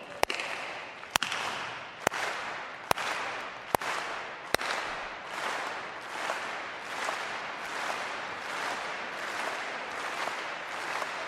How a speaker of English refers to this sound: Ready? Give me a clap. Go slow.